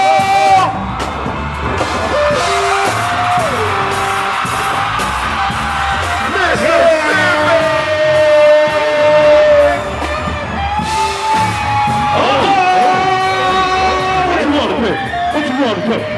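A loud live crowd in Jackson, Mississippi, at the start of the 85 South Show cheers and yells continuously, with sustained high-pitched whoops and shouts rising and falling over a dense wash of chatter and noise.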